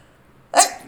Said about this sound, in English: I feel like I'm about to sneeze.